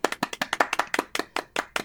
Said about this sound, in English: Welcome, Blue America. More than a golf clap.